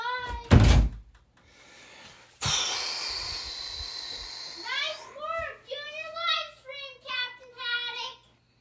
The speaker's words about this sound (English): And why don't you close the door, dude?